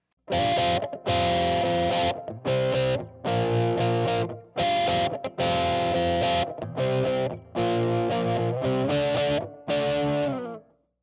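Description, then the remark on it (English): An electric guitar through a Linear Power Bird treble booster pedal and an amp plays bright, slightly gritty chords in short rhythmic bursts with brief gaps between them, fairly loud, with reverb and no voices. “But let's go ahead and give a listen to what that reverb, guitar, and amp sound like with this Linear Power Bird treble booster.”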